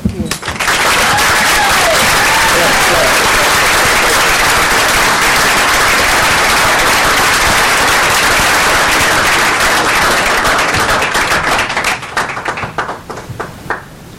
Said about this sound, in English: I was just waiting for all the applause to stop there.